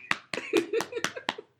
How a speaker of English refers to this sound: Okay, clap it up for her.